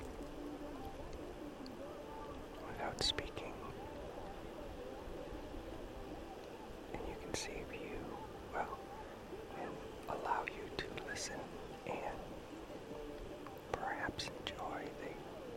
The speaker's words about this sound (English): sounds of the beach, which right now are definitely waves, voices, music. I don't really hear much besides those three. Sometimes you hear some birds. The seagulls will make some sounds occasionally.